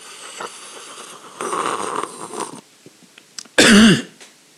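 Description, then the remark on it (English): A noisy slurping sip of a hot drink, then after a brief pause a single loud, harsh cough, followed by quiet. No talking. “Well, not the cough.”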